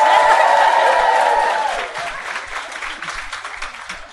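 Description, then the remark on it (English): A crowd bursts into loud applause when audience members not from Leeds or nearby are asked to clap, with a bright whistle or cheer riding over the clapping at first, then the clapping thins out and fades to scattered claps. “Give me a round of applause if you're not from Leeds or close by.”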